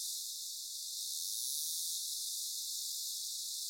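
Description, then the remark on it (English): A toothed whale's echolocation terminal buzz, made while diving deep to hunt fish and approaching a fast-moving fish target: a rapid stream of clicks merging into a steady, high-pitched hissing drone that holds at an even level throughout, with no voices. “When they approach the fish, which is a fast-moving target, they start this buzz because they need to update their information about the position of the target the way bats and other dolphins do.”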